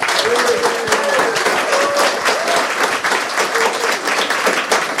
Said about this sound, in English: Well, I'm sure our audience here will have loads of questions for you, because we're also joined by our live audience at Microdot. Give yourselves a huge round of applause.